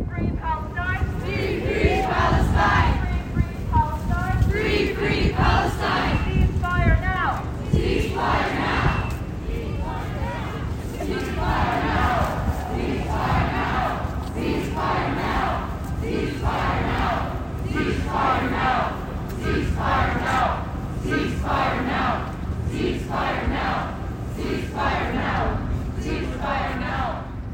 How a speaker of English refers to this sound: Students, faculty, and community members met at Ontario Hall, with a crowd of approximately 250 people gathering for speeches and participating in chants.